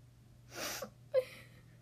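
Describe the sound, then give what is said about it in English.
A single sneeze, probably acted out by a voice: a breathy, hissing intake followed by a short, sharp vocal burst, fairly quiet against a faint background hum. “Pigs make me sneeze!”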